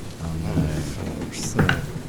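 Dice rattle and tumble across a dice tray in a busy clatter, with a sharper burst of knocking partway through as one player's dice knock another player's already-rolled dice to a different number, while people talk over the noise.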